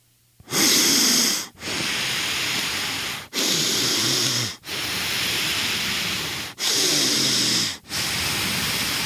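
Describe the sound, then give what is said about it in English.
The speaker imitates his own wheezing, whistling breathing while sleeping in a dead-quiet room in L.A.: six loud raspy strokes in a steady rhythm, each a hissy exhale or inhale with a thin whistle, separated by brief gaps. “And this was me breathing.”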